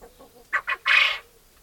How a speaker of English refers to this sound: Now, quails on a whole are pretty quiet, especially compared to chickens, and chickens I really think are quite quiet anyway. Now, the males do crow, and I have actually got a little recording of a male quail that I'll play for you now.